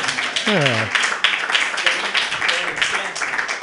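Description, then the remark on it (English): Steady, dense audience applause fills the whole stretch, a loud crackling wash of many hands clapping, with a brief rising vocal whoop near the start; standing applause from a comedy show audience as a comedian takes the stage. “Standing applause.”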